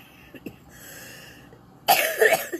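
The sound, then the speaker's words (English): A single loud, harsh cough from a person with a cold bursts out near the end after a quiet stretch with faint rustling, standing alone with no talking. “Still having a cold to cough.”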